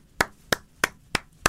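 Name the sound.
one person clapping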